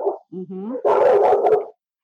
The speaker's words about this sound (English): Oh, see, these are my dogs barking at each other. One is inside and one is outside.